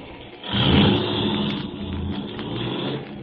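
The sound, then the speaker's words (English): A car engine rumbles loudly and rises as the vehicle pulls away, then settles into a steady drone with a faint hiss on top. “Start driving.”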